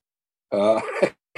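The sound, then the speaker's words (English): A single short, voiced gasp of horror imitated by a voice, fairly loud, with a groaning edge, followed by a brief pause and the start of another vocal sound. “Gasping.”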